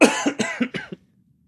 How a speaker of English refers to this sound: Before I do, I should cough. Hold on.